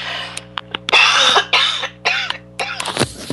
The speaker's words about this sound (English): Excuse me, I have to cough.